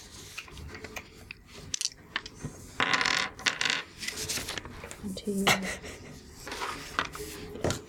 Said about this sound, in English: Oh, that sounds like a lot of dice there. That is hefty.